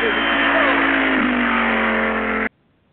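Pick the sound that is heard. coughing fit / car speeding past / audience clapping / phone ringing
car speeding past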